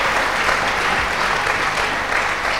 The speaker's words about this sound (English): Acclamons pour le Seigneur. Let's clap for the Lord.